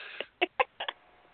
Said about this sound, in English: Like the old tummy growling. Oh, boy. Certain gastrointestinal movements.